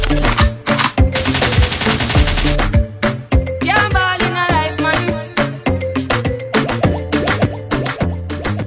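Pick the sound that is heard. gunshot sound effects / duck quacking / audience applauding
gunshot sound effects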